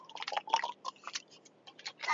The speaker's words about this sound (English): I'm drinking water. I just started.